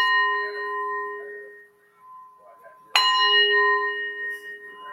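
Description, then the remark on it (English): Wind chimes ring with sustained, shimmering metallic tones that slowly fade, then a fresh, louder cluster of strikes sets them ringing again partway through. “Wind chimes are good for clearing energy and bringing in good spirits.”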